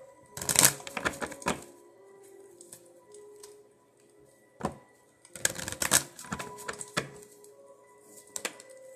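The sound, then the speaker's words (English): Tarot cards being shuffled in two brisk bursts of rapid, papery riffling and snapping, separated by quieter handling sounds and a single soft tap. “I'm going to shuffle that again.”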